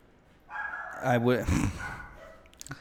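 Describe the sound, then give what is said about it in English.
Dogs bark and let out a rising, wavering howl, with a couple of sharp yips near the end, loud against a faint background. “They're howling for us.”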